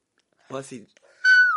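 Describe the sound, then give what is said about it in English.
A person imitates a cat, making a short voiced murmur followed by a loud, high, drawn-out meow that slides downward in pitch. “Was that what Archie and Little Lad sound? I saw your cats there today.”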